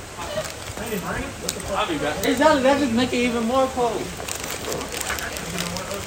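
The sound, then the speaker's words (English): Steady hiss of rain pattering on a hard surface throughout in cold weather, with a voice talking over it in the middle. “It's raining and it's cold.”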